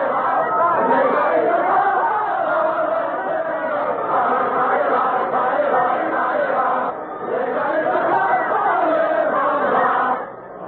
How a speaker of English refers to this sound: It's Ça Ira, an old French dance to which revolutionary words have been set.